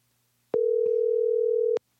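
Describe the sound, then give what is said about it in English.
A single steady electronic ring tone of a phone call to the speaker's mother waiting to be answered, one burst lasting just over a second, clear with clicks at its start and end. “So we're going to give it a shot.”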